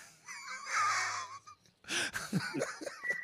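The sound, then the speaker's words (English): A long, wavering whistle rises over the Yankee Stadium crowd for about a second after a hitter strikes out, followed by a burst of noisy crowd reaction and scattered voices, with a thin high whistle tone at the very end. “one of your hitters strikes out in Yankee Stadium, and you proceed to hear this”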